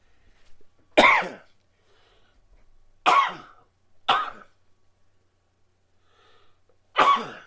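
Four sharp, loud sneezes burst out one after another at uneven intervals, each a sudden explosive blast with quiet pauses between and no talking.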